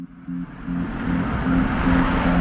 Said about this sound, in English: took me on a drive through his Philly neighborhood